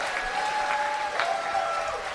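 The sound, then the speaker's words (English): An audience claps steadily for a comedy set, a dense wash of many hands sustained across the whole stretch at a moderate level, with no voices standing out. “Can we give a round of applause to his set?”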